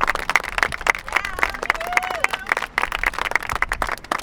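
A crowd applauds with dense, rapid clapping that holds steady throughout, with a few faint voices and whistle-like cheers rising above the clapping.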